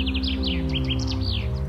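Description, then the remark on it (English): Several migratory birds chirp and sing in the forests and fields of the former Berlin Wall border strip, in quick, overlapping bursts of high tweets, continuous, layered over a steady low droning hum with no voices. “With forests and fields, it was a haven, particularly for migratory birds.”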